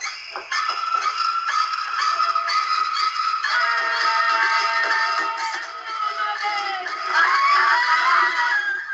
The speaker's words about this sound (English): I thought it was just screaming, but yeah, no, this time, it's like, no mother?